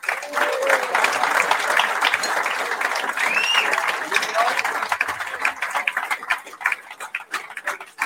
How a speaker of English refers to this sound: Let's have a round of applause as well for Mark Todd.